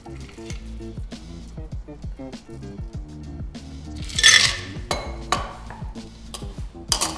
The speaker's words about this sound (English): And like a good bartender should, you strain it, or you double strain it into your glass.